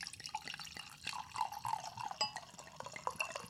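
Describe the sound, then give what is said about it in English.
Roofline 2016 red wine blend from DeLeal pours steadily into a glass for a few seconds, a bubbling, splashy trickle whose pitch rises slightly as the glass fills, with no talking. “I'm going to pour myself a glass”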